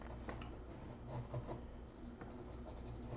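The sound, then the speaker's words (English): A pen scratches across paper as someone writes a note to pass to another person: quiet, uneven bursts of short raspy strokes with brief pauses between them, and no voices. “Have you resorted to actually passing notes?”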